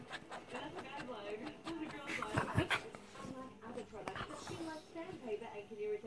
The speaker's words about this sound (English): Stop fighting with the dog. You stop it. No, stop spitting at the dog.